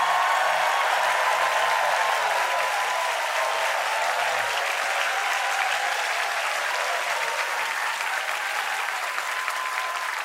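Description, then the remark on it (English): A late-night TV show studio audience applauds an applause line steadily for about ten seconds, a dense, loud wash of clapping hands with no one speaking over it. “That's an applause line.”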